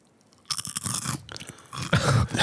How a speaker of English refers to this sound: We're gonna have no furniture if you keep chewing on it.